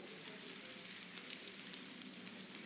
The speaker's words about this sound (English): So when I say major keys in my talk, I need you guys to get your keys out and jingle them, all right? So here we go. Here's a practice time. Major keys.